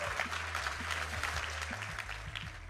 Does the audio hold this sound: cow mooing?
no